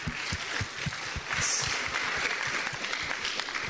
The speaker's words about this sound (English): God said, clap for Solomon. Deus disse, bate as palmas para Salomão.